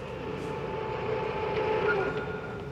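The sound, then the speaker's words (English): A spaceship's rocket engines roar in a steady, dense rumble, with humming mid-pitched tones running through it and a slight swell in loudness toward the end. “I mean, these things have big rockets on the back of them that make really cool sounds.”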